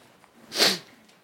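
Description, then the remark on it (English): One quick, breathy sniff from a speaker at a morning worship service: a short hissing pull of air through the nose that swells and fades in under half a second, with nothing else but faint background hush. “I'm sniffing and drinking hot tea this morning.”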